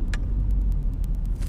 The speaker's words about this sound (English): Traffic is annoying me, man. They changed the traffic pattern out here. The bad part about it, there's three main exits that they changed, and they blocked all three of them off.